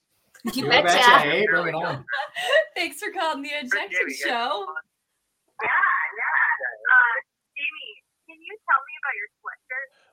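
An incoming call from a caller in Canada to the Unjected show rings with a warbling, wailing, howl-like ringtone: a dense burst at first, then a series of shorter, choppy, wavering tones with brief gaps between them.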